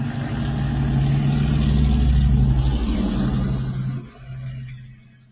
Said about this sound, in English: See, okay, y'all, a car about to drive down the street and it has a very, very loud dual system or engine. Let's just let it pass.